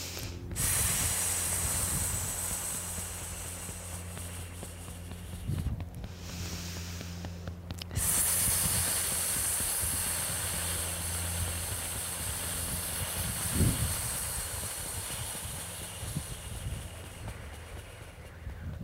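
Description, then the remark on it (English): A person makes a long, steady snake-like hiss on the exhale, the breathing sound for the lung, while massaging the divot below the left shoulder, pauses briefly for a breath, then hisses again just as long. It sounds fairly soft, with no talking. “And we'll inhale and we'll exhale and make the sound for the lung too, which is like a snake.”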